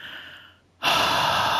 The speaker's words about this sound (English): And no matter where you are right now, I want you to take one large deep breath.